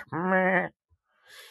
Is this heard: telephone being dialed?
no